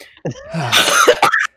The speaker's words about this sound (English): So sorry, I coughed and burped and everything down the microphone because I choked.